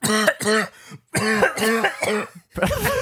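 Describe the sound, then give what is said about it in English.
A man's harsh coughing fit: a rapid string of about six to eight hacking coughs in quick bursts, with brief pauses between clusters, loud and rasping with no talking. “Coughing like he smoked a cigarette.”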